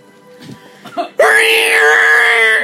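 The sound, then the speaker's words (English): After a moment of faint murmuring, a voice suddenly lets out a loud, sustained, high-pitched scream, imitating the Waterboy scream from the Adam Sandler film and holding it steadily for about a second and a half. “Can you guys do a Waterboy scream?”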